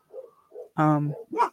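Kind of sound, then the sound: animal, dog barking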